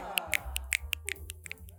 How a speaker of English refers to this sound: Welcome to our third installment of the Sandy Care Poetry Lounge. Look at this beautiful audience. Give yourself an applause.